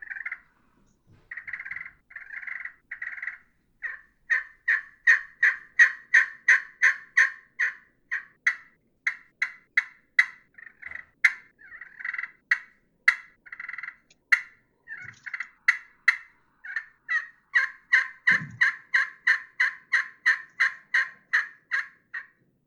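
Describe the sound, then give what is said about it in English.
A turkey pot call with a hard leopard skin jasper surface and a curly maple pot scratches out long runs of raspy, rhythmic yelps mimicking an old hen, loud, with steady repeated notes and only brief pauses between sequences. “So here's leopard skin jasper with a curly maple pot.”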